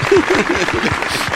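A small audience claps in a steady, moderate patter, the applause filling the whole moment with dense, hissy noise while a voice briefly murmurs underneath.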